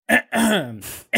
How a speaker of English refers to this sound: Hold on. Maybe I should clear my throat.